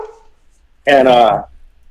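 A single loud dog bark, drawn out for about half a second, follows a brief faint murmur and stands out sharply against an otherwise quiet background.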